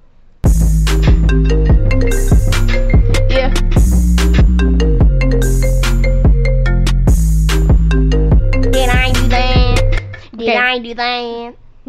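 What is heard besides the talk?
phone ringing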